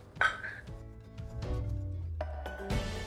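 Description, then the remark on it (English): Glasses clink together in a toast, a bright ringing tap followed by a few softer knocks and clinks, with no voices over them. “I'll drink to that. So cheers.”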